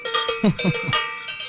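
A cowbell clanks several times in a quick, uneven rhythm, its bright metallic ring hanging on between strikes at a fairly loud, steady level.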